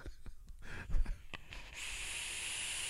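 A few soft clicks and taps, then a steady, airy rush of air drawn through a Cloud Chase RDA vape atomizer with a thin high-pitched whistle from its airflow riding on it, holding evenly to the end with no talking.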